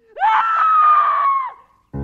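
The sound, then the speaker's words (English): A single loud, piercing scream rises sharply, holds steady for over a second, then trails off, followed by a brief pause and the start of a lower sound. “I must have slept in those dark hours because I was suddenly jolted awake to the sound of a scream.”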